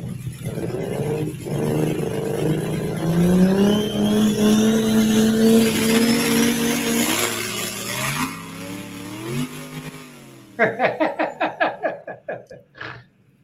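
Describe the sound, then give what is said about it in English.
A truck engine revs hard and climbs in pitch over a loud, steady roar of spinning tires, then drops off into a series of sharp, sputtering bursts near the end. “Just gonna sit here and spin.”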